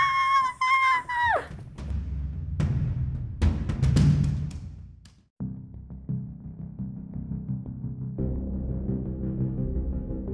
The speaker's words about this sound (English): I thought I heard a scream.